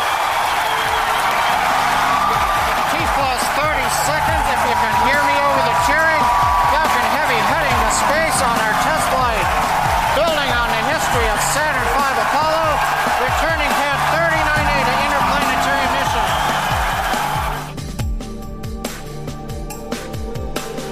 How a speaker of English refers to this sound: Ignition. The crowd goes insane.